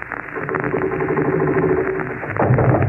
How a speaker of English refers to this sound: That's supposed to be a sewing machine, folks. Last week, you used it for an automobile, you know?